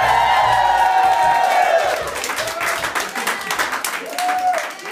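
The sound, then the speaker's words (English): A live studio audience at a radio broadcast on the University of Oregon campus in Eugene, Oregon, breaks into loud, sustained applause mixed with cheers and high whoops, dense clapping filling the whole clip and easing slightly toward the end. “We're in Eugene, Oregon, on the campus of the University of Oregon, broadcasting in front of a live studio audience.”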